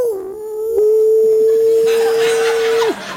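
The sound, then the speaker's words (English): A voice imitates a bloodhound's bark as one long, loud baying howl, starting with a slight dip, holding a steady mid pitch for about two seconds, then dropping off abruptly. “Bloodhounds bark like this.”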